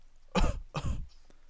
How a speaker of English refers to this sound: Cough 2 times for me.